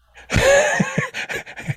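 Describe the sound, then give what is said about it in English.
A voice imitates an excited puppy, starting with a loud, breathy whine, then quick rhythmic panting huffs, about five short bursts. “And then I wrote, kind of like a puppy.”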